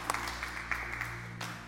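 An audience applauds with a steady wash of clapping, a few sharper claps popping out, at a fairly soft level and with no voices over it.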